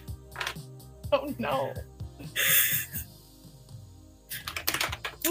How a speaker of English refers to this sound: Oh, no. Runaway dice.